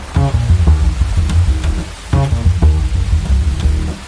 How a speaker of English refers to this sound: Ah, it's raining so hard, I can't even see.